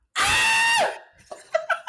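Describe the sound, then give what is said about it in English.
A loud, high-pitched scream held for more than half a second, so intense it distorts before dropping off with a downward slide, followed by a few quieter bursts of voice. “Oh, first of all, I just maxed out the levels.”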